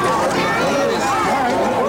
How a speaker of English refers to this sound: As the grand opening festivities began, a large crowd gathered to watch the celebrities arrive. By the time Ringo and his wife, Barbara Bach, arrived, it was a mob scene.